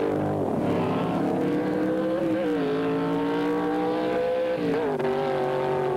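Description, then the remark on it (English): Powerful drag racing engines roar loudly and continuously, their pitch rising and dipping through gear changes as an F-gasser and then an A factory experimental car launch hard down the strip and accelerate away in a heat between Dave Koffel and Dave Strickler, with no talking over the sound. “The F-gasser takes off, and then the A factory experimental job.”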